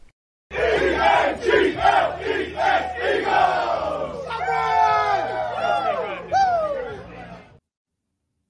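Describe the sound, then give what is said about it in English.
A big stadium crowd of Eagles football fans chants in loud, rhythmic shouted bursts, then breaks into a swelling roar of many voices that carries on for several seconds before cutting off. “From the first pour to the crowd roar, fly Eagles fly.”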